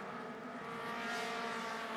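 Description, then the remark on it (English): Mazda MX-5 race cars roar around a track in an eight-way battle for the lead, their engines blending into a steady, loud, high-pitched drone with layered whining tones and no pauses. No one speaks. “Aiden Fasnacht is right on the tail of Sam Paley, the teammates working together to try and move back up through the field as Aaron Johnson has joined the party in the number 24, and now we've got an eight-way car battle for the lead.”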